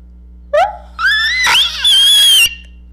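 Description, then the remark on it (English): A person imitates the Jersey Devil with a loud, strained, screeching scream lasting about two seconds, its pitch climbing sharply in several linked bursts before cutting off abruptly. “What's your best Jersey Devil impersonation? Let's give it to me.”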